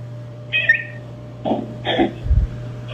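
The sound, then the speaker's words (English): A cat gives a few short, high-pitched meows, then a single dull, low thump near the end as the cat is tossed off to the side, all over a steady low hum with no talking. “Heard the little, meow. That was when you kind of tossed it off to the side. The thump was meow.”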